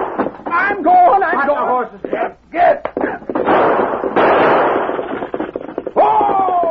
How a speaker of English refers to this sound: Horses, frightened by slaps and gunshots, raced away from the base of the mountain and continued over a small rise into a valley.